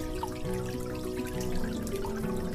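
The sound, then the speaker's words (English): A dripping faucet, with a steady run of plinking water drops falling one after another, each with a short rising ring, and no voices. “Do you have dripping faucets?”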